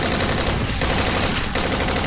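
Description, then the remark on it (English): Loud, sustained rifle gunfire in a dense, rapid stream of shots, broken only by two very brief pauses before the firing resumes. No voices are heard. “He began firing into the crowds of congregated Miserithians, pieces of their body flinging into the air”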